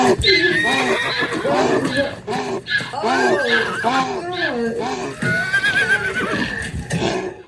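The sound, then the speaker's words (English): Loud equine whinnies and neighs from a male donkey mating with a female horse repeat almost continuously, the high, wavering cries overlapping one another with brief snorting breaths between. “A mule, however, is what results from a male donkey mating with a female horse. A ritual that sounds a little something like this.”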